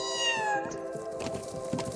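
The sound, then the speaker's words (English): A recording of a kitten meowing, played from a speaker in a playback experiment with deer mothers: one loud, long, high, plaintive mewl whose pitch slides downward, with no voices or other sounds alongside it. “It is not as though she really wants to be defending a kitten, but the sounds are so similar that she can mistake it for the cry of a fawn.”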